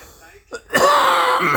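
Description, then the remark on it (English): A single harsh cough, a brief catch of breath followed by a loud, rasping burst that carries for about a second, like someone clearing their throat. “That's a cough, pardon that.”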